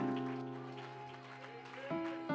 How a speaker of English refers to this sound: Come on, somebody give our God a hand clap of praise.